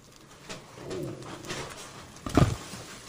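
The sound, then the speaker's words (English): A bird on a table coos, soft throaty murmurs rolling for a second or so before a louder, fuller coo near the end, with no one talking. “Man, some bird on the Niggas table.”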